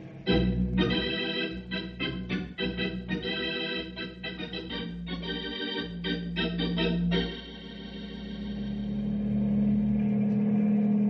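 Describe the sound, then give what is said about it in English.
A helicopter engine in flight, coming in over the village of Greenbow to set down in the village square: a loud, rhythmic chopping throb for about seven seconds, then settling into a steadier, smoother roar with a deep drone that swells toward the end. No voices. “Looks like you ought to be able to set the copter down in the village square,”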